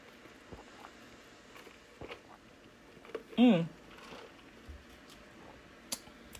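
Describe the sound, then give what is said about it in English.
A single brief, slurping sip of hot hibiscus tea breaks an otherwise quiet stretch, with a short voiced murmur riding on it and a few faint clicks and taps scattered around. “Let me take a sip of my hibiscus tea here.”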